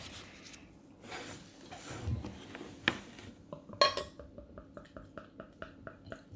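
Clinks and rustling, then a sharp glassy knock followed by a steady run of rhythmic glugging pulses as a drink is poured from a bottle. No one speaks.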